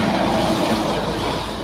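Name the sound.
street traffic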